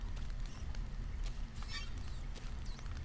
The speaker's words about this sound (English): I can definitely hear spiders running around.